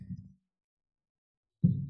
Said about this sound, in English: I had a system, so yeah, that heartbeat, you heard it.